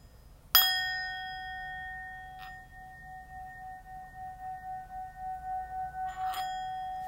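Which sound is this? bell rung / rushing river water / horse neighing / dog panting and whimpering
bell rung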